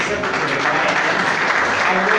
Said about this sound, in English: Please, can we please clap for the choir? Please, let us clap for the choir, please.